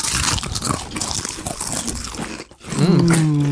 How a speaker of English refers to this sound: are you ready to crunch into adventure? I can't wait to see if the tube makes the crunch different.